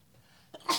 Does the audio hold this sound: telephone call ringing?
no